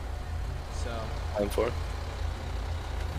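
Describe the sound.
A heavy truck engine rumbles low and steady right on the bumper of the car ahead in traffic, droning throughout with a brief muffled voice and a faint squeak partway through.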